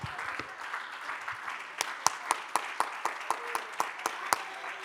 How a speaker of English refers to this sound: Come on, let's give them a hand. Let's clap our hands unto the Lord. Thank you, my brothers and sisters. Hallelujah. Oh, let's clap our hands and magnify the Lord just for a moment.